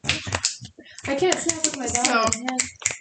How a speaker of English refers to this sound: All these snapping noises that the recording just loves.